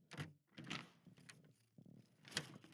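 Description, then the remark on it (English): A door is handled and shut, with a series of knocking, scraping thuds and a sharper clack near the end as it closes. “would you be so kind as to lock that door?”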